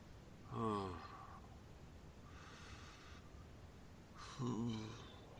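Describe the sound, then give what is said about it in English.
Three heavy, drawn-out breaths during a seance, each a loud voiced exhale or sigh about a second long, separated by short pauses with no talking. “I'm breathing. Breathing.”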